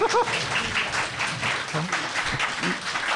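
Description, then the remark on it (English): Steady audience applause at a show presenting the book Scotland After Britain, a dense, continuous patter of many hands clapping at an even loudness throughout, with faint voices and a brief whoop mixed in. “You better wait till the end before deciding you want to applaud.”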